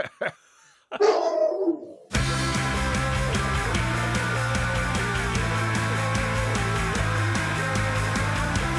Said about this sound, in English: Is that Billy? Sorry, that's Billy, my dog, was at the door, yeah. Billy.